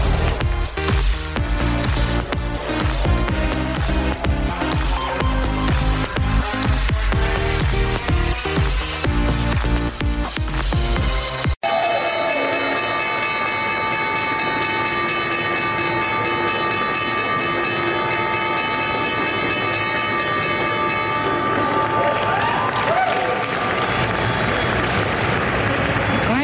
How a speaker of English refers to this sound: Was the opening bell starting another trading week here on Wall Street at the New York Stock Exchange.